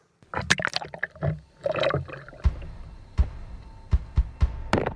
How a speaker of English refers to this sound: I've taped a 4-pound brick to the paddle, and we're going to see whether or not it sinks or if it floats. If it sinks with a 4-pound brick attached, it's certainly not going to support a full-grown man.